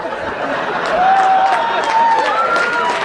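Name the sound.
clapping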